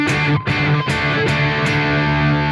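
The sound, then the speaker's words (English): An electric guitar played through a fuzz distortion pedal, heavy, thick and saturated, with a few chords struck at a steady pace and left to ring loudly, no voices. “But like I still get all that like distortion without it having the like screechiness, you know?”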